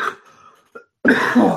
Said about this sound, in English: Oh, I got sick, by the way. That's my lingering cough.